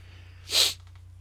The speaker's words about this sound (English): Bless you? Question mark? Also bless you with a question mark.